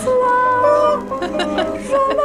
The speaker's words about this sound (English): There was a small bird in here. Hope you can't get COVID from birds.